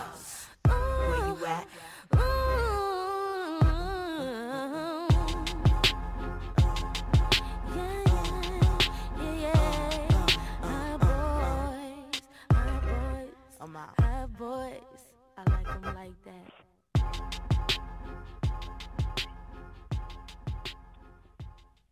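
A hip-hop song plays loudly, driven by a steady, punchy beat and deep bass under wavering melodic vocals, with a couple of brief breaks in the groove.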